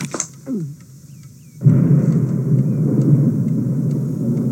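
A low, rolling rumble of thunder swells in suddenly after a quiet moment and keeps growling steadily to the end, deep and broad, with no voices.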